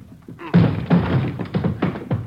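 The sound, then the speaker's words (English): A series of heavy, booming thuds against a door, about five blows in quick irregular succession, loud, as police officers ram it to break it open. “Hit the door.”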